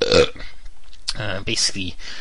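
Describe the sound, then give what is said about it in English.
A guttural belch rumbles out after a brief breathy noise, loud and drawn out over about a second, with no other sounds around it. “seems to be just stalling and belching.”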